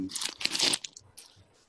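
paper being crumpled up

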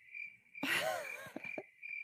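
cricket chirping sound effect

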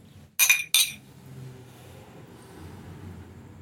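wine glasses clinking

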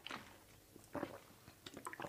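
sipping water

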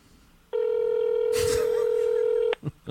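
telephone ringing

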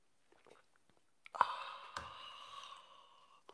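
sipping coffee

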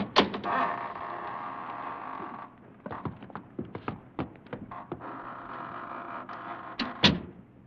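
door opening and closing

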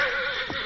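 horse whinnying

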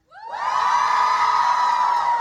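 audience cheering

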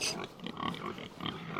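pigs grunting

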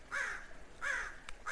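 crow cawing

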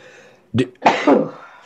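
sneeze

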